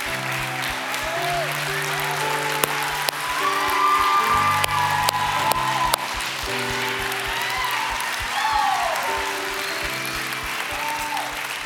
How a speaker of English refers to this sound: It's the best day ever. We're so excited for you. People are cheering because we are so excited for you.